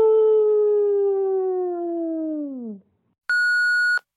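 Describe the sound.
A person imitates a wolf with a long, loud, sustained howl that slowly slides downward in pitch before cutting off, followed by a short, steady high beep.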